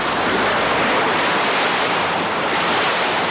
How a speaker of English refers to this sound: And the best guess they have is Cooper's money was washed up by high water and wave action, much like these churning river waves.